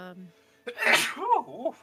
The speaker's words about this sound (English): sneezes are contagious because I just sneezed like 2 seconds ago. Bless you.